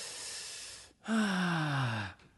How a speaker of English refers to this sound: I'm taking the deep breaths because breathing is part of hydration. It's true. Breathing is a big part of hydration.